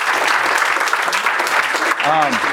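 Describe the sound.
Steady, dense applause from an audience fills the whole stretch, loud and continuous, with a brief voice rising over the clapping near the end.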